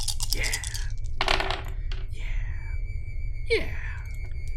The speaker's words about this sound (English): Let me roll for them. I'm gonna say you're covered in the goop, so I'm gonna give them some bonus dice.